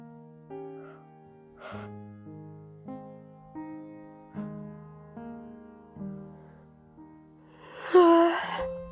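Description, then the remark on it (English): A person lets out a big, loud, breathy yawn near the end, coming right after several seconds of soft, stepping melodic notes. “Oh my goodness, that was a big, big yawn.”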